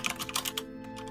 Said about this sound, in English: Here, I'll type it out for the players.